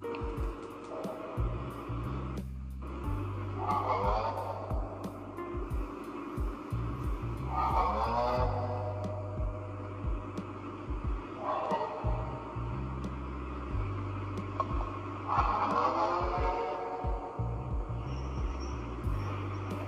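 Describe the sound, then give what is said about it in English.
A low, throbbing mechanical drone runs throughout, while eerie wailing roars swell and fade about every four seconds, mixed with scattered metallic clanks and rattles like heavy chains. No one speaks. “The sound recorded seems to be the faint roar of some beasts, which is acclaimed to be that of the fallen angels, which was followed by the sound of heavy chains.”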